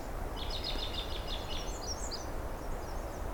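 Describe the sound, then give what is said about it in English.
An American robin sings a quick run of bright, high chirping phrases for about two seconds over a steady low background rumble, then the song fades into faint, scattered notes. “It's a bright and cheery robin.”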